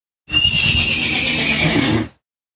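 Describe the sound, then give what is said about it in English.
A single white mare screams at night as she struggles against a river's current where a river delta meets the ocean: one long, shrill, sustained cry lasting nearly two seconds, with strong high tonal bands over a rough, grating low rumble, loud and alone before cutting off abruptly. “A single white horse is screaming as she struggles against the pull of the river's merciless current carrying her out to sea.”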